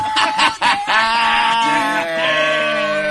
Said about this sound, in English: This is the baby dinosaur, baby velociraptor hatching.